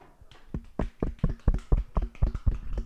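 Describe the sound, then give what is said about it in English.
A few people clap in loose, uneven rhythm for a few seconds, sharp claps overlapping slightly, with no talking. “Can we all just give a little clap?”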